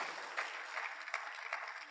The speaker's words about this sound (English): please give them a rousing round of applause.